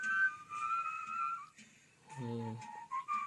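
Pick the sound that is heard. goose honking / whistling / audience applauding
whistling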